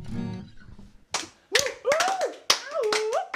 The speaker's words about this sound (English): Cheering for ourselves.